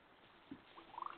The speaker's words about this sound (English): Wow. You've got a noisy kitty. Yeah, she gets a little moody sometimes. I like it.